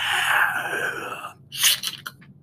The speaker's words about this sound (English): Yeah, I'm about to gasp.